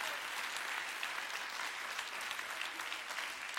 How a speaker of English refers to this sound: Come on and clap your hands all over the room today.